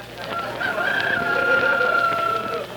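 A rooster crows in one long, drawn-out call while chickens cluck softly around it, with faint farmyard noise filling the background. No one speaks.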